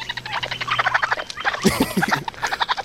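Baby raccoons chittering in a video: a steady stream of rapid, high-pitched squeaky trills and chirps overlapping throughout, swelling into a louder, busier burst midway, with no talking.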